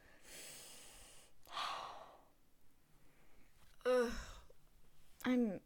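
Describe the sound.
Heavy, breathy exhales and inhales, followed by two loud, rough, voiced coughs a couple of seconds apart, from a person coughing due to allergies.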